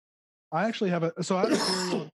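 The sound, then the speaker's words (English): A person clears their throat with a couple of raspy, voiced coughing bursts, fairly loud, lasting under two seconds. “You got to cough harder to get it out of your throat.”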